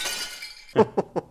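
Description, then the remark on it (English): Thin glass breaks with a bright, scattered tinkling, followed by three or four sharp cracks in quick succession as it shatters further. There is no talking. “The glass is thin, so thin that you could like crack it over your own head.”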